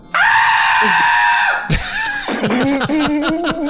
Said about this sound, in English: A scream that loud can only be silenced by a gag ball.